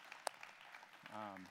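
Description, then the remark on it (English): A short burst of audience applause at Sunridge, a dense patter of many hands clapping, with one sharper clap near the start and a voice beginning to speak at the end. “So you should applaud yourselves.”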